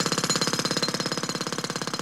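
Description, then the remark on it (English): A road drill 7 metres away hammers in a fast, steady rapid-fire rhythm, loud and continuous, with no voices present. “A road drill 7 metres away.”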